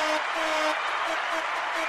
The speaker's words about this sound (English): Yeah, here's some round of applause.